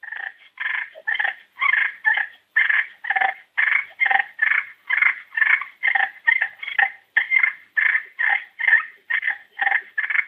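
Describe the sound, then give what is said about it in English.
Rapid, rolling turkey fighting purrs scratched out on an ARO Margaret slate call that has never been sanded, imitating turkeys establishing dominance: a steady run of raspy, buzzing bursts repeating about twice per second, fairly loud with no talking. “And I'm going to demonstrate the fighting purrs on the ARO Margaret slate.”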